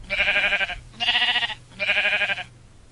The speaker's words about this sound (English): Hi, Mr. Sheep.